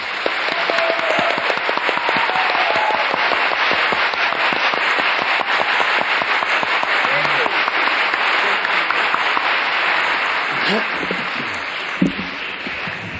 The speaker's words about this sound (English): I ask you to join us in a grateful applause for our host.